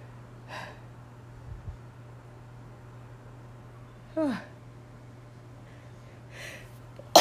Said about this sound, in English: oh, I gotta sneeze.